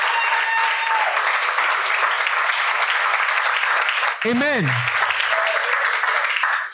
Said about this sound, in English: Can you put your hands together for all of them? Please appreciate them.